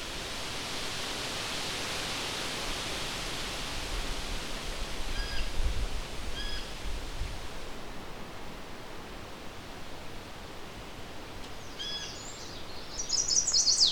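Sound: chestnut-sided warbler song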